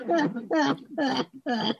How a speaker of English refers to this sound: The fucking man, this cough of yours,